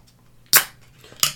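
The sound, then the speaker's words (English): A bottle of dark chocolate and pale chocolate beer is popped open for tasting: the cap comes off with a sharp, bright snap and a short fizzy hiss, followed by a second crisp pop under a second later, with no talking. “All right, well, let's pop it open and see what we got.”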